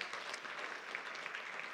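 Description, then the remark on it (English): A church audience applauds steadily for the children who performed and their kids' ministers, a dense wash of many hands clapping with no individual claps standing out, holding at an even loudness throughout the short stretch. “So let's give them a big hand.”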